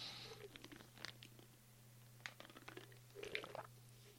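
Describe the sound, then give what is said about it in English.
Quiet sips of iced sweet tea in Texas: soft slurps and small wet clicks, with a brief louder slurp near the end, all over a steady low electrical hum. “And, excuse me for this sip of tea.”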